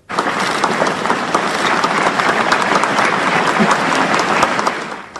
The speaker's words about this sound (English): The crowd spontaneously applauding as pallbearers carried Hawking's casket into a Cambridge church for the private service.